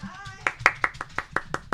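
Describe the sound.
A short burst of applause: about eight crisp, evenly spaced hand claps at a steady quick pace, following a brief voiced cheer at the start.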